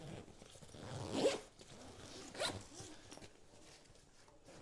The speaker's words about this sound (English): Bit of zip ASMR there for all of you freaks out there.